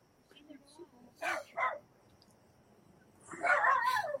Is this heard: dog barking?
yes